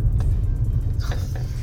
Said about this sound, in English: Sorry, I'm just a bit blocked off by a bus.